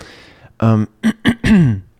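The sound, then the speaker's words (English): A person clears their throat in a short series of rough, voiced bursts: one longer grunt, two quick catches, then a final drawn-out clearing that drops in pitch, fairly loud, with no words. “clearing my throat a whole lot this morning, it seems.”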